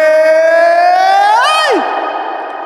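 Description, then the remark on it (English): A single sustained foghorn blast, a bright, buzzy horn tone that slowly rises in pitch, then swoops sharply downward and cuts off, leaving a fading wash behind it. No one speaks. “It means Foghorn Friday!”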